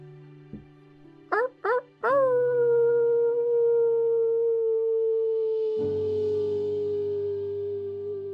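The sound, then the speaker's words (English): A person imitates a quiet wolf howl amongst a group: a few short rising yelps, then one long, steady howl held for several seconds, with a low humming drone swelling in beneath it near the end. “slowly begins to initiate a quiet wolf howl amongst the group.”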